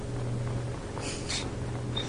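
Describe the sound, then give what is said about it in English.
Two short, snorting pig grunts from a video game, in an open area with many pigs, one right after the other, over a steady low background hum, followed by a faint brief tone. “Pigs galore? Well, slaughter them galore.”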